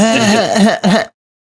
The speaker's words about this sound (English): Why is it you always got to point out when I got to clear my throat?